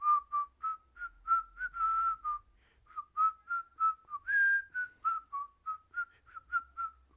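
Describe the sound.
A person whistles a melodic tune in a steady rhythm of short, clear notes, with a brief held note partway through and a slight falter near the end.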